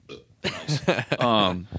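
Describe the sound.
A loud, drawn-out burp, croaky and voiced, rumbling for over a second with a few rough breaks before trailing off.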